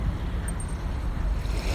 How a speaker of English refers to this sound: Breathing in, holding your breath, feeling the beating of the heart, the gentle waves lapping up against the shore. They've changed their rhythm in a matter of minutes.